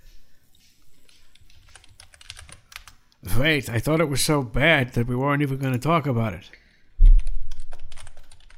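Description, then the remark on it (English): Quiet keyboard typing clicks away in the background, faint and steady, before a person speaks over it; a louder burst of clattering keys follows near the end. “I hear typing.”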